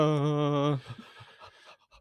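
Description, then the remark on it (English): A voice mimics exaggerated heavy breathing, loud: a long voiced, groaning exhale, then several short, breathy pants that fade out. “Heavy breathing.”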